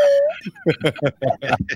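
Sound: slide whistle solo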